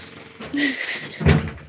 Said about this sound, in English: I don't know what that noise your door makes. It's the door.